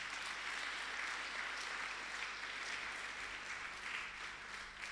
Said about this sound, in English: Are we all happy to be in the house of the Lord? Oh, give Jesus a big round of applause.